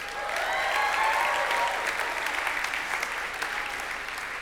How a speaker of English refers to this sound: Give the Vineyard a round of applause.